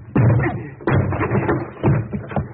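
Heavy, repeated thuds as a door is battered and forced, about four loud blows at uneven intervals, each with a splintering, rattling crash, close and loud with no voices.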